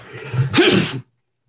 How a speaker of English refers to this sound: Oh, excuse me, I'm going to sneeze.